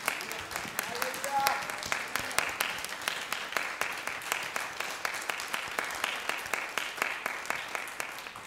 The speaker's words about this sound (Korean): 정말 최고의 하나님께 머리로 이날 아침에 박수로 같이 영광 드려도 될까요? 우리 한번 하나님께 할렐루야로 영광 돌립니다.